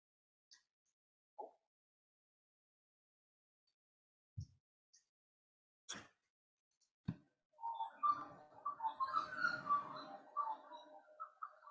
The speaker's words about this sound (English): Can you hear some birds? That's my background.